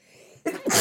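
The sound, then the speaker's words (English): A single sudden sneeze bursts out after a brief quiet moment, sharp, breathy and fairly loud. “Bless you. Thanks.”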